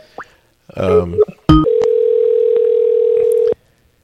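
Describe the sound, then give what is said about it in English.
A brief voice-like burst and a sharp click give way to a steady, unbroken telephone dialing tone as someone places a phone call, a single mid-pitched hum that holds at even loudness for about two seconds before cutting off. “Let me try buzzing him.”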